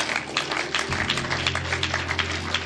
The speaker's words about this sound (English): Oh, if you are clapping, clap.